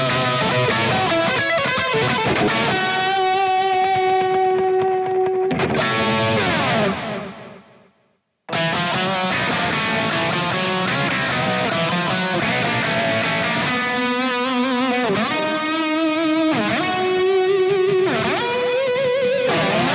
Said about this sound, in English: Sounds like guitar screaming there. I love the unison bends, and you don't quite get them in. That's when it's nice, and then you kind of like vibrato around it.